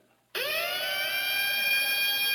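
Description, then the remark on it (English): A car alarm imitating a British air raid siren kicks in abruptly after a short silence. Its loud, buzzy pitch swoops upward, then holds a steady, sustained wail. “The British air raid.”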